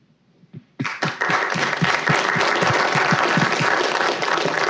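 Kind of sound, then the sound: crowd, audience applause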